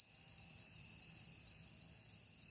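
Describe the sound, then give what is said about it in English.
Steady, high-pitched cricket chirping trills continuously in short pulsing bursts, fairly loud, with no voices or other sounds. “I'm waiting for the crickets. Are you ready for the crickets?”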